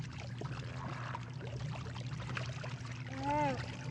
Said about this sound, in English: And they just let him go. Just falls right back into it. All the water sound.